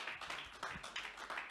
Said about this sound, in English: If you believe that tonight, I want you to give God a hand clap of praise.